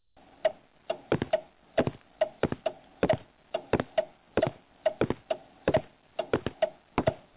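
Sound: grandfather clock ticking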